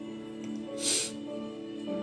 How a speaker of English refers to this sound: Excuse me for sniffing.